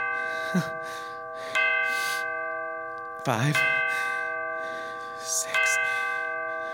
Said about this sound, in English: I awoke. I remember just that second the clock on the mantel began striking.